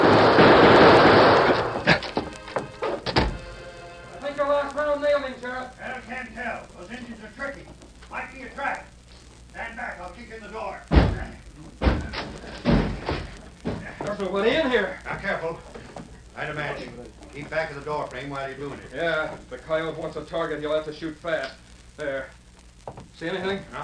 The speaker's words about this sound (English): To avoid the sheriff's gunfire, the Lone Ranger edged along the wall of the freight office. Then he snapped several shots into the air to cover his retreat as he slipped out the rear door.